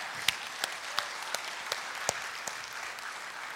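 A crowd applauds in a steady wash of clapping, with a few sharper, louder claps standing out at irregular intervals. No one speaks over it.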